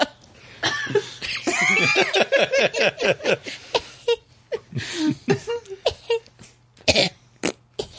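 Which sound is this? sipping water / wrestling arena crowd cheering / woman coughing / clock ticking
woman coughing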